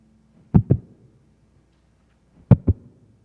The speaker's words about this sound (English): Heartbeat. See, you can't listen to God's heartbeat unless you get up close. Even the doctors have to put on a stethoscope to hear your heartbeat.